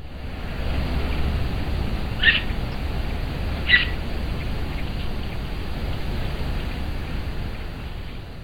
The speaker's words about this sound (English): It's that mountain lion chirping.